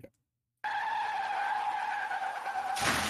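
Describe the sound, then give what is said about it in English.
A loud, sustained tire screech holds steady for about two seconds after a brief silence, then breaks into a harsh, noisy crash impact right at the end, like a car skid and crash sound effect. “I mean, they even put the car crash sound over it.”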